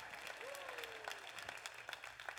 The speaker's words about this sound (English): I'm going to make everybody clap for that.